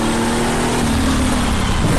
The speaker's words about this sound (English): I have to be very careful on throttle application as well, just like that, even under cold tires, because when the turbo kicks in, car absolutely wants to get sideways on you.